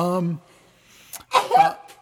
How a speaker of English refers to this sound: You're supposed to say Gesundheit. Oh, sorry. Oh. Gesundheit.